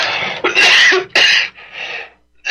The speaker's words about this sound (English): Excuse me. Bad time for a cough.